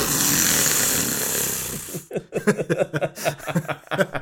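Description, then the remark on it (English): A voice imitates a fog machine explosion at a band concert: a loud, breathy hissing rush lasting about two seconds, then choppy, rhythmic voiced bursts like sputtering or laughter. “Like a fog machine explosion, right? It's an explosion.”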